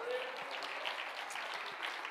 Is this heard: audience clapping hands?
yes